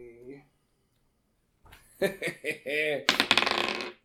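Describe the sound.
Voices talk, then a rapid rattle of small hard clicks follows as dice are rolled, clattering and tumbling across a tabletop for about a second and coming up 7.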